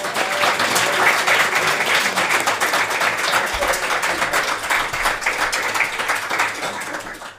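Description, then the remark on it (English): A crowd applauds steadily for several seconds, a dense, even wash of many hands clapping at full volume, with a voice briefly audible beneath it. “Round of applause for”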